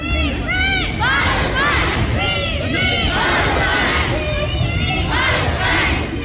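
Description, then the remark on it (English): A loud crowd of schoolchildren shouts and chants together at a street protest in Glasgow, part of the UK-wide school strike for Palestine calling for a ceasefire in Gaza, high-pitched yells rising and falling in repeated bursts over a constant roar of many people. “School children have taken to the streets of Glasgow demanding peace in the Middle East.”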